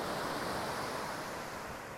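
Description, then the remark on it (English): A steady, full roar of ocean surf washing over a beach in Aptos, California, with a constant hiss that holds evenly throughout and no distinct individual wave breaks or voices. “This beach in Aptos, California is the closest that I'll get to narwhals today.”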